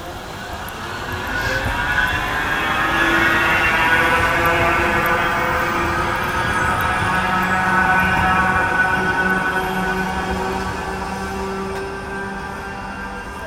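A tram rolls along its rails, a steady rumble layered with humming, whining tones that swell over the first few seconds, hold, then ease slightly as it passes.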